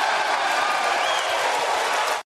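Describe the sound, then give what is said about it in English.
Republicans in the US House of Representatives chamber burst into loud, sustained cheering and dense applause as Kevin McCarthy is elected Speaker after 15 ballots, a steady roar of clapping with no break for about two seconds before it cuts off abruptly. “Big cheer from the Republicans in the chamber.”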